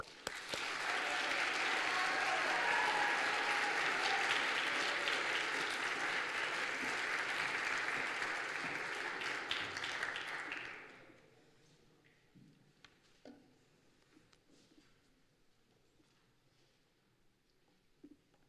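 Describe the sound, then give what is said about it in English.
An audience applauds loudly and steadily for about ten seconds as the first storyteller comes up onto the stage, the clapping dense and sustained before it fades out into near quiet. “And with that, I would invite you to applaud our first storyteller up onto the stage.”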